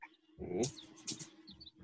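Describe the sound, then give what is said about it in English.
A wild bird calls in short, high chirps, a few scattered notes over about two seconds, moderately faint, with a brief lower rumbling vocal sound and some rustling near the start. “I normally see them this far east. Interesting. Say a yellow-crested warbler.”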